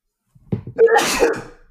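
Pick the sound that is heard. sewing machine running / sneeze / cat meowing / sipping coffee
sneeze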